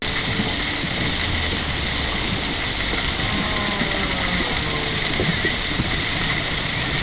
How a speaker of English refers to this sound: The first is of bottlenose dolphins in Bocas del Toro, Panama.